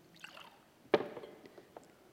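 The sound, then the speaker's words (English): Quiet handling of water as a speaker grabs some water: a sharp clunk followed by brief liquid splashing and gurgling, then faint trickling sounds tapering off, with no one talking. “Hold on, just grab some water.”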